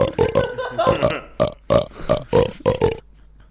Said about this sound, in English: Of which we've entitled An Ode to Burps. Enjoy.